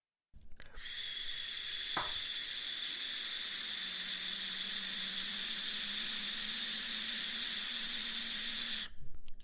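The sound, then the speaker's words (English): A vape hit: one long, steady, airy hiss that runs unbroken for about eight seconds, with a faint click early on and no voices, then cuts off abruptly. “Hit the vape. Oh, yeah. Big vape hits.”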